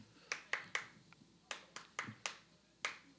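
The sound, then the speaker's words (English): About ten sharp hand claps tap out an uneven rhythm from part of a song, given as a hint in a music trivia question, with short bursts and small pauses between them. The claps are crisp and fairly quiet, with no voices. “I don't know if the last couple claps. That sounded really on beat.”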